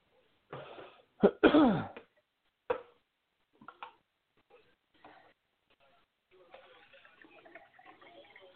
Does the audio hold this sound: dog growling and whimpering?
no